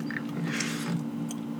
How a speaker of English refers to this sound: Let him chew his gum. I know, but it's picking it up. That's okay. People want to hear that.